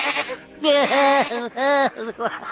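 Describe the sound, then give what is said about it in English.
A goat bleats, a quick run of wavering, nasal cries with two long, loud bleats in the middle and shorter ones trailing off. “Oh, look, a goat.”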